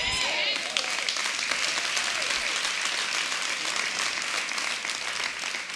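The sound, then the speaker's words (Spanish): Steady, dense applause from an audience fills the whole clip, a continuous wash of many hands clapping at an even loudness, with a few brief voice-like tones rising through it at the start. “Algunos aplauden con alegría y otros aplauso de ópera, ¿verdad?”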